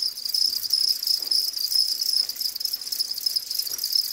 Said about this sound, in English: That's right. Crickets.